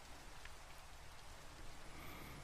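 Steady rain falls in a continuous, dense hiss with a low rumbling undertone, even and unbroken throughout, with no voices.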